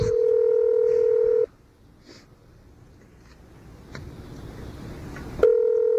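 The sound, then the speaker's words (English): Telephone touch-tone sounds: a loud, steady electronic tone holds for about a second and a half, cuts to a quiet, hissy line, then abruptly returns near the end. “Can't you dial any better?”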